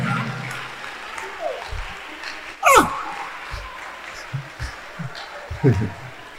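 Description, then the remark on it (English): A large church audience claps hands for the Lord continuously in a dense, steady wash, while voices call out over it, with a few louder rising shouts standing above the applause. “God, this clapping, you won't have a wife. Clap well.”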